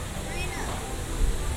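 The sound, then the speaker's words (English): Steady rushing water from a log flume ride as empty logs come down, a dense continuous roar with a heavier splash near the end, with faint voices murmuring in the background. “Okay, I don't think Splash Mountain is running yet.”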